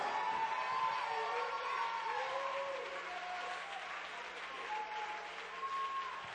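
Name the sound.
audience applauding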